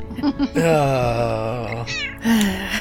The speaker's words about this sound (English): Meow, indeed.